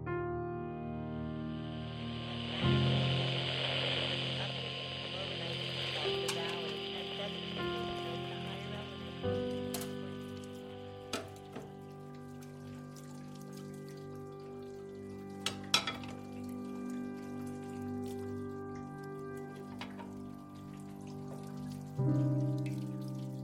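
Running water splashes steadily for several seconds as dishes are washed, then eases while a few sharp clinks and clatters of dishes sound over a steady low hum.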